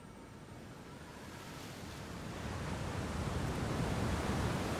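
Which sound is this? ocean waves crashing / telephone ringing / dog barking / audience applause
ocean waves crashing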